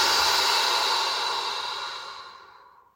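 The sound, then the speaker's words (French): A single long, airy deep breath, in through the nose and out through the mouth, steady at first and then slowly fading away over a few seconds, with no talking. “Prenez une profonde inspiration par le nez. Et expirez par la bouche.”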